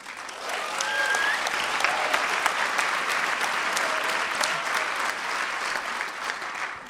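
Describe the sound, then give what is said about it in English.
A public radio crowd applauds steadily for about seven seconds, dense clapping at even loudness with a few faint whoops or cheers mixed in, no one speaking. “Fans of inclusiveness. I'm shocked to hear that from a public radio crowd.”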